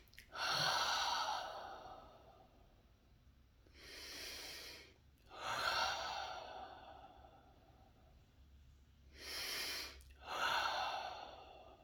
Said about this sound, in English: And the next thing is, we need to look into deep breathing. Let's breathe to soothe.